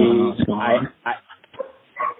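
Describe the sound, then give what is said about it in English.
Dogs bark excitedly in a burst of loud, high yips and woofs at the start, followed by a few scattered shorter barks and whimpers that trail off. “All right, my dogs are going crazy.”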